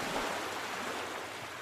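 A steady, hissing wash of surf fills the short stretch, waves rolling continuously with no voices or other distinct sounds on top.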